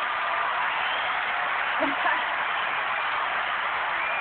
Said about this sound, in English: You notice we got hand claps. We got hand claps and rim shot.